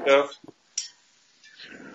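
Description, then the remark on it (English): Wind chimes tinkle in the breeze on a breezy night, a few bright metallic clinks and ringing tones scattered over two seconds, with a brief voice at the start and soft rustling noise underneath. “No, my wind chimes. Sorry. It's a little breezy tonight.”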